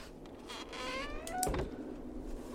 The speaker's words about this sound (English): I like the creaking door. I like that they're painting a picture in your mind.